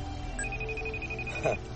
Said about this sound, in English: A phone ringing.